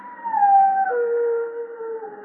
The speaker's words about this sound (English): Means someone's going to die when a dog howls like that.